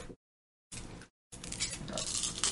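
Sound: dice being rolled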